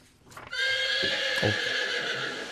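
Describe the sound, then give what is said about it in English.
A horse neighs loudly at the start of a song, a long whinny with a bright, wavering high pitch that holds steady for about two seconds, with faint hoof clops underneath at the start. “I forgot this song has a horse in the beginning.”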